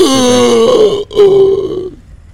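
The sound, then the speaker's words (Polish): A man's voice imitates the old, groaning breath of a dwarf lying in a colourful uniform: two drawn-out, rasping vocal groans with a brief gap between, loud, fading out at the end. “Oddech. Stary oddech od tego krasnoluda, który tutaj leży w tym kolorowym mundurze.”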